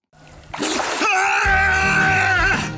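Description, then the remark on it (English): A person bursts up out of swamp water in Lake County after being submerged, with a splash, and lets out a long, loud, sustained scream, harsh, with water sloshing underneath. “So that was our way of doing that in that video, was me just coming screaming from the swamp.”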